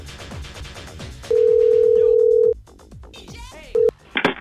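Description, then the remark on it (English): A steady telephone ringback tone sounds for about a second, a second ring starts and cuts off short, then a clatter as the phone is snatched up hard at Don Blade Suits in Broken Arrow, over faint background chatter. “why did you answer the phone so angry? Are you mad at me?”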